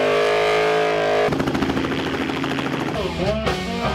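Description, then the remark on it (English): Loud car engines rumble and rev, their throaty drone shifting pitch, with a quick rising rev near the end, amid the bustle of a crowded car meet of a few hundred cars at Hennessey. “Tony Blackburn called saying he wanted to invite a few hundred cars to Hennessey for the day”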